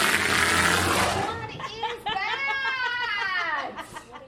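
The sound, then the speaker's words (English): A walrus vocalizing: a loud breathy rush of air gives way to a ringing, harmonic tone that rises and falls, punctuated by a few sharp, isolated knocks. “In the wild, the knocks of male walruses are far more developed.”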